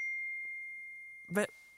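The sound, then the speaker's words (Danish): A bright, high electronic ding rings out and lingers as a steady tone, a phone's text message alert as a reply to a woman's text message arrives, with a brief burst of voice near the end. “Så får hun simpelthen et svar tilbage på sin sms.”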